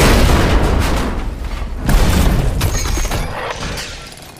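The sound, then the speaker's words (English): Slap charges blast open doors: a loud booming detonation, then a second heavy blast about two seconds later, each trailing into rumbling, crackling debris that slowly fades. No voices. “I put slap charges on the doors.”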